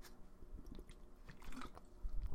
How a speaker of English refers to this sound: I'm drinking some H2O. Drinking some fucking great value purified drinking water.